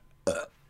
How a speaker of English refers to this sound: This is a professional podcast. Don't burp.